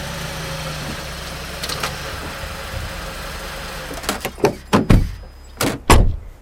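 A car engine idles with a low, steady rumble as the car parks beside a blue Ford pickup in front of a house, with another car parking right behind it; then several sharp thumps follow in quick succession, like car doors opening and slamming shut.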